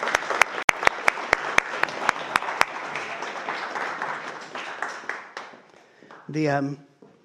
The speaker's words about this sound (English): You can't see them, but they're still applauding.